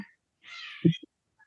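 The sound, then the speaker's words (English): Two young cats chasing each other and play-fighting: a short, raspy yowl lasting about half a second, followed by a couple of soft thumps, then quiet with a faint chirp at the end. “I hope you don't hear my background noise, which is two young cats chasing each other, fight playing.”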